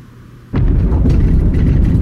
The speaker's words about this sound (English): Not seconds after he had exited, a loud booming noise echoed high overhead. The thunderous rumble shook the windows and made me jump.